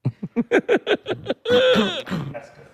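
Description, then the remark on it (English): A run of throat clearing: a quick series of short, guttural bursts building into one longer, harsh rasping clear that trails off, with no talking. “I can't clear my throat at all. Take some water.”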